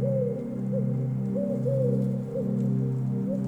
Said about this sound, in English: The owl's call is clear.